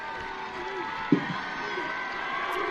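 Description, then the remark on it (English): A large crowd at a BYU match, standing opposite the commentators, keeps up a steady, roaring wash of cheering and applause in the final seconds of the game, with faint voices rising through it and one brief sharp burst partway through. “The crowd opposite where we are, standing, cheering, applauding, looking down at the BYU bench, high fives, coaches, Coach Rockwood walking down the bench, high-fiving all of her players.”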